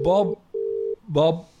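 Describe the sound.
A phone line ringing out: a steady electronic ringback tone in a quick double pulse, with voices murmuring over the start and again as the next ring begins.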